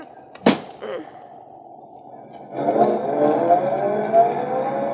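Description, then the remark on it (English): A sharp thump and a short clatter, then after a pause a car engine starts up and keeps running with a steady, rumbling drone as the car is put in the garage. No one speaks. “I'll just put the car in the garage.”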